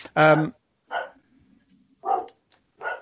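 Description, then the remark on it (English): The speaker's dogs bark in the background in a few short, separate bursts about a second apart, fairly clear, with a faint low murmur between them. “That's my dogs in the background.”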